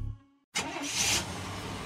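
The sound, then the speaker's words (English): A suburban truck's engine turns over and roars to life after a brief silence, then revs steadily as the vehicle pulls away, driving across Wisconsin; loud, with no voices. “There goes Pam Yonke across Wisconsin in her suburban truck.”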